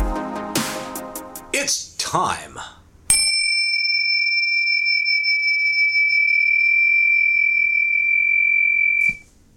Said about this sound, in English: I heard the bells from Rocky. Ding, ding. Those are great bells.